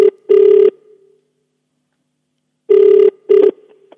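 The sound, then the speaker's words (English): A telephone ringback tone heard on an outgoing call made live on a radio show: two short ring pulses, a long silent gap, then two more, clear and fairly loud with no talking. “please bomb by the phone. Okay, we go.”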